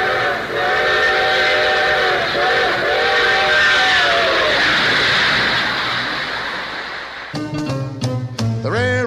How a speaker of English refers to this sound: It comes and goes through the middle of the house, and the trains are all on time. And here comes the 509.